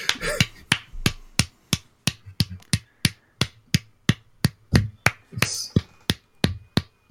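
Steady clapping, about twenty sharp, evenly spaced claps over several seconds, fairly loud and crisp, with no one talking.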